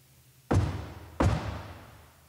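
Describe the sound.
Two heavy, booming foot stomps on a floor by a preacher during a church service, imitating someone knocking at a door, spaced about a second apart, each a sharp low thud with a short ringing decay.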